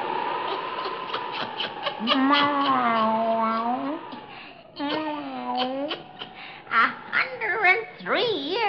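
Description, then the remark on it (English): A black cat named Satan meows in long, drawn-out wails, several sliding yowls one after another, ending in a few shorter, wavering cries. Loud, with no talking. “Fascination of the eerie, weird, blood-chilling tales told by old Nancy, the Witch of Salem, and Satan, her wise black cat.”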